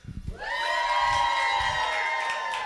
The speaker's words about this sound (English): Exactly. That's a big cheer.